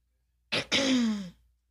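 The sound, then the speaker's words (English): A single throat clearing: a short harsh burst of air followed by a voiced, rasping sound that slides downward in pitch and fades, with silence around it and no talking. “So I need to cough.”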